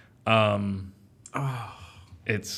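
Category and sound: human body sound, sneeze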